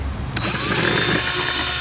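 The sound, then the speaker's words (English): A loud power drill whirs steadily for under two seconds as it drives a screw, its motor pitch shifting slightly partway through after a brief sharp click. “I think a boy with a long drill would be able to do this.”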